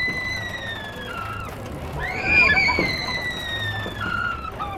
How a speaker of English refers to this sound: Okay, the new president is named Vincent Price, but those screams came from the rides at Price-palooza, a state fair-style midway of food on a stick, music, and rides set up on the quad of East Campus the night before the ceremony.